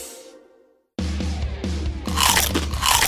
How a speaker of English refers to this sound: I just wrapped my chompers around a nice, beefy, cheesy, creamy, spicy, saucy, crunchy taco. It's like there's a flavor explosion inside my mouth right now.